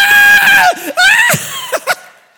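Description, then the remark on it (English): A voice imitates screaming roller coaster riders with a series of loud, high-pitched screams, two long wails followed by shorter sharp shrieks, alone. “The whole roller coaster is screaming.”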